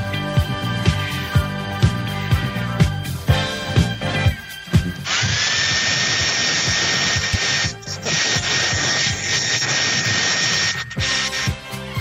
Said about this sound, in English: The hair dryer. The hair dryer is on. Sorry.